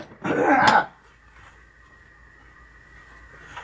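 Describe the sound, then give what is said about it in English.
A single loud throat-clearing cough near the start, a rough raspy burst lasting under a second, followed by quiet with no talking. “What are the chances are I remember to edit that coughing out at 8:51?”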